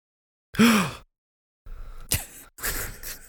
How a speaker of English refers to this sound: I gasp. Oh, my God. Oh, my. Oh, my God.